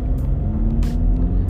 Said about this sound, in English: And I hope the car sounds nice. Like, I hope there's like a little bit, you can kind of hear the purr of the engine. Sure, it's not massive, but it's bigger than what I've had before.